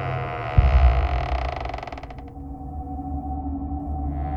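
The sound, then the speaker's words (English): A door creaks slowly open with a drawn-out, groaning squeal that rattles and stutters before fading, after a soft thud at the start, over a low steady hum. Fairly loud, with no voices. “So you open the door, slowly.”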